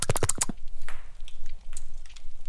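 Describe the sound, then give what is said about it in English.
A short burst of quick slurping sips from a drink, the second sip of a mixed drink being tasted, followed by near-quiet with a few faint small clicks and rustles. “Sip number two.”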